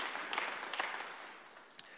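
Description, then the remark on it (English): An audience claps together as praise to the Lord in a dense, continuous patter of hands, fairly soft and steady, with a few sharper individual claps standing out, one crisp one near the end. “A clap to the Lord.”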